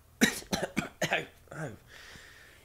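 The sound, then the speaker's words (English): A rapid string of four or five wet, phlegmy coughs, fairly loud, ending in a rougher hacking cough and a faint, breathy trailing rasp, as oil drips from the cougher's chin. “You take the UST off of the friar, and the UST kind of coughs as oil drips from its chin.”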